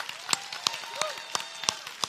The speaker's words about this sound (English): And I'll clap with you, not because that clap's not for me, but for the awesome volunteers that showed up last night.